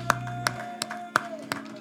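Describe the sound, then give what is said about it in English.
A church audience at Sunday worship gives the Lord a hand clap in unison: five sharp, evenly spaced claps at a steady rhythm, with a low sustained musical hum droning underneath. “Let's give the Lord a hand clap if you can.”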